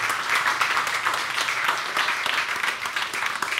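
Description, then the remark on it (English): Steady applause from an audience welcoming a speaker to the stage, a dense wash of many hands clapping at once, fairly loud and sustained throughout without any voices standing out. “Please have a big round of applause for Shahzeen Attari.”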